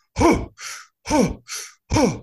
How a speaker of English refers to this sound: I'm doing deep diaphragmic breathing. So I'm doing three sets of 30 breaths. And a breath looks something like this.